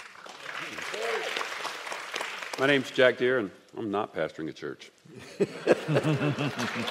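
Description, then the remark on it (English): An audience at Woods Edge church claps in a steady, crackling wash of applause that runs beneath a man's voice, fading briefly mid-sentence before rising again under his continued speech. “You still get applause.”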